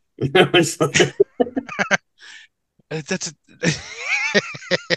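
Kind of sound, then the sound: vocal imitation, person imitating chicken clucking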